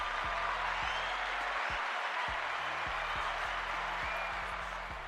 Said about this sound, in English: Let's clap that up.